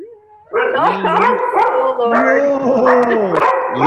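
A dog barks up close in loud, drawn-out yowling cries that run continuously for several seconds after a brief quiet start, with no talking over it.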